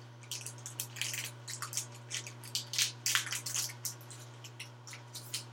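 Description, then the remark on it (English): Irregular crinkling and rustling as a brown sugar package is worked open, bursts of packaging noise coming one after another over a steady low hum. “Okay, there's numbering on the brown sugar, like to open it, like steps.”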